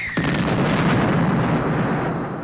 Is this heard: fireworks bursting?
yes